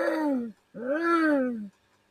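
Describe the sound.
A person imitates doves calling with two moaning, cooing hoots: a short one, then a longer one that swells and sinks in pitch. The voice is fairly loud, with no other sound around it.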